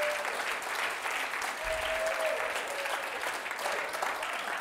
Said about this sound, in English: He deserves a round of applause for that. That's huge. Right?